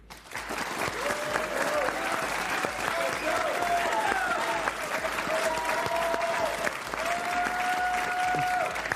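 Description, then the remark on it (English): A debate audience applauds loudly and steadily, a dense wash of many hands clapping that holds for the whole stretch, with a few cheers rising above the clapping. “Our audience this evening has agreed to refrain from interruptions or applause, with one exception.”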